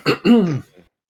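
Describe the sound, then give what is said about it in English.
A person clears their throat: two quick, rough bursts followed by a faint trailing rasp, then silence. “Let me clear my throat.”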